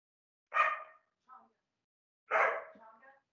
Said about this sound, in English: Dog. Roof.